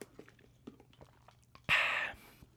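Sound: sipping a drink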